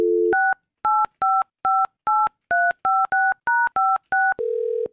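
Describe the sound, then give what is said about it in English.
A brief dial tone, then eleven quick touch-tone keypad beeps in a steady rhythm, ending in a sustained tone as a call to the speaker's fiancé at his work starts to ring. Clear, with no talking. “I thought it would be fun to call him while he's at work”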